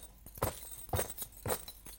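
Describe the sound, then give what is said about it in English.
A bunch of keys is shaken in a steady marching rhythm, with three strong metallic jangles about half a second apart and lighter clinks between, imitating the marching footsteps of a Roman army. “And he was very famous also for using things like, he used a bunch of keys to, what do you think they would be for? It was for a Roman army, believe it or not.”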